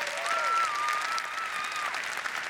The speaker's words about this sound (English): Come on, give a big clap for our Haitian ministry.